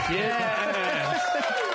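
A crowd cheering sound effect played from a cheer button: a dense, steady roar of many overlapping voices, loud and sustained for under two seconds with no single speaker standing out.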